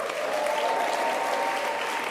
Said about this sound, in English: And I think before we start, we should just congratulate and give a cheer for the people of Melbourne.